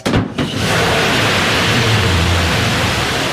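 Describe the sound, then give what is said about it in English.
A rocket engine ignites for liftoff: a brief uneven burst, then a loud, steady, hissing roar that holds without letup, with a low rumble underneath and no voices. “I mean, it sounds like you're turning on a propane tank. You know, there used to be a thunderous rocket.”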